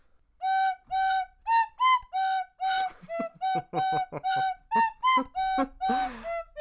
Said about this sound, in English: Now I went for some amazingly difficult ones here, but anyway, we'll get through. Here's your first tin whistle tune